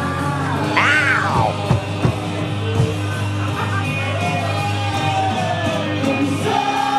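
A large crowd cheers loudly and steadily for several seconds, with individual yells and high whoops rising above the roar, plus a few sharp claps or thumps.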